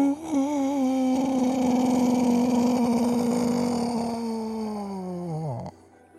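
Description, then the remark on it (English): A distant, creepy, drawn-out howl of a subterranean beast, low and wavering at first, holding steady for several seconds before sliding downward and cutting off. It sounds eerie and moaning, heard alone without talk. “Some sort of distant, strange, creepy howl of a subterranean beast.”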